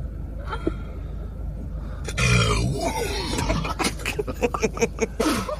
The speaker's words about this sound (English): What was that? That was her burp. And then they laugh so hard. They can't get a hold of themselves. The other one spits out her Sprite and her eyes get so wide when she does that burp because she's shocked. That does sound like somebody possessed.